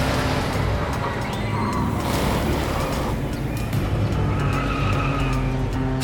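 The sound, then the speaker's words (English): A car drives through streets to an amusement park with a loud, steady engine roar, while its tires squeal and skid in several drawn-out screeches over about six seconds. “drives through the streets and arrives at the amusement park.”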